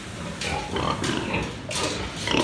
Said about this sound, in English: So I went to a pig farm on the coast of Fujian, on the beach, and it was a kind of small commercial farm, about 150 pigs.